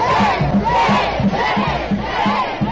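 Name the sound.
crowd cheering and shouting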